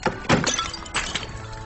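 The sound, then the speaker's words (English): A ceramic vase, knocked down during a fight at an auction, crashes and shatters, with a sharp initial impact followed by a second burst of breaking and scattered tinkling fragments settling over under two seconds. “Ray and Lily fight him over it, and the vase ends up getting knocked down and destroyed.”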